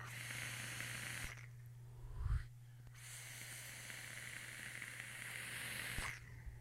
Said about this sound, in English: You hear that crackle though?